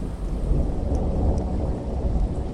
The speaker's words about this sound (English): And when I was there, there happened to be a thunderstorm that morning, like a routine thunderstorm. And it didn't flood the houses, but it did flood some of the yards because some of the drainage ditches had overflowed.